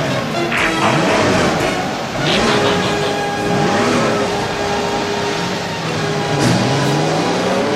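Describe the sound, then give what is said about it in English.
Several Autobot car engines start and rev loudly together, pitches rising and falling in overlapping sweeps, with a steady high whine running through the dense mechanical noise. “Autobots, start your engines!”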